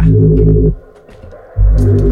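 A loud, bass-heavy hip-hop track plays through speakers while people sip beers, dropping out briefly in the middle before the thumping low end comes back in.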